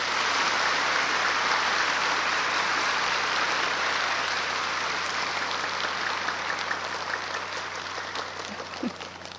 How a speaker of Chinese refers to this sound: 现在我们以热烈的掌声恭请上清下海无上师来为我们开示。